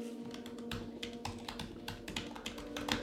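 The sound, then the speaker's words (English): Steady typing of a message on a computer keyboard, a quick irregular patter of key clicks running throughout over a faint steady hum, with no one speaking. “All right, so I'm typing out.”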